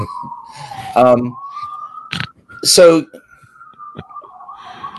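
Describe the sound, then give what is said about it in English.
A steady wailing emergency-vehicle siren carries from a street in New York City, sustained throughout, while people speak in short bursts over it. “Can you hear the sirens?”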